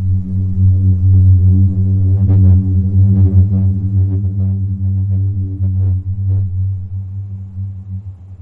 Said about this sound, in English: sand dunes rubbing against each other is really interesting